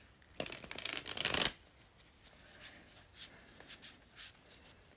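A new Lightseer's Tarot card deck is riffled in one loud, crackling burst, followed by softer intermittent taps and slides as the cards are squared and handled again.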